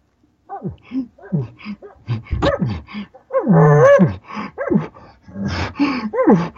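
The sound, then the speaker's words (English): A voice imitates a bull elk displaying for a cow, giving a quick series of short, breathy pants and throaty glunks, fairly loud, with a longer, louder moaning note near the middle. “And a bull will start panting. He'll even add some glunks.”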